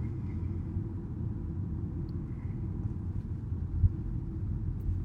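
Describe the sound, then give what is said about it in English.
A deep, steady rumble of team car engines in a cycling race convoy, waiting in second gear, constant for the whole stretch, with no voices and no clear changes in pitch. “All the team cars are raring to go behind me.”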